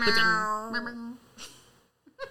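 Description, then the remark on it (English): A long, drawn-out meow from a cat trained to meow slides downward in pitch, loud, followed by a few brief, quieter vocal sounds and a short pause. “Have you seen the cat that's like trained to meow?”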